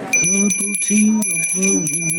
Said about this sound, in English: let's ring the bell. I'll try and do the to the rhythm of Herbal Tea of the Week